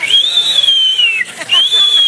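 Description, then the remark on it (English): A person whistles in imitation of a turbocharged car with an APR Stage 3 Plus upgrade whistling as it drives down the road: a steady high tone that falls, breaks briefly with a breathy gap, then rises again. Loud and alone without talk. “And when we upgraded, when that car got an APR Stage 3 Plus upgrade, it whistles as you drive down the road.”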